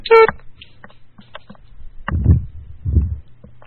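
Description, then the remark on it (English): A single short, buzzy telephone on-hold beep sounds loudly at the start, followed by a couple of low, muffled rumbling thumps and quiet line noise. No one speaks. “Like, what's the significance of that beep? Is that saying we're still on hold?”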